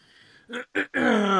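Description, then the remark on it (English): A loud yawn from a tired person at about 9 o'clock in the evening: two quick breathy intakes followed by a long, drawn-out voiced exhale that slides downward in pitch. No words are spoken. “I know we're both yawning.”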